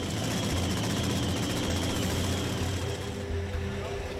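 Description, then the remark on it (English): An Outlaw Nitro Funny Car engine rumbles at a steady idle, a loud, harsh roar with deep throbbing low pulses that holds constant for a few seconds, with no talking over it. “It's been too long since we've heard the unmistakable sound of Nitro.”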